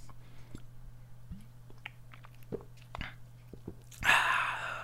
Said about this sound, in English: I need another sip of Strongbow. Strongbow.